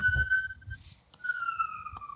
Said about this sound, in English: There's just some police car that's driving by my house.